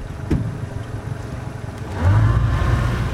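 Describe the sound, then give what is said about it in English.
A pontoon boat's motor on the Cumberland River in Nashville, setting out from the East Bank Landing Dock, drones steadily with a low rumble, then its pitch and loudness rise about two-thirds of the way through as the engine revs up, humming on to the end. “This is no ordinary ride for this pontoon, which normally hosts parties up and down the Cumberland.”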